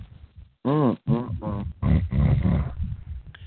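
Someone snoring in a few loud, rough bursts, each a throaty, voiced snort with a rising-then-falling pitch, coming in an irregular rhythm with short pauses and no talking.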